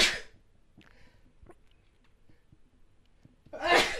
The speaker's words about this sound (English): Sorry. I've had sneezes for weeks now.